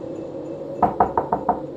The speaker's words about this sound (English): Knock, knock. Who's there? It's your son.